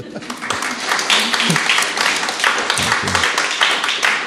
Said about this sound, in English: Thank you. You can clap.